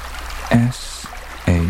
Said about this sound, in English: Good Lord, this water is still rising. I better find a tree, and quick.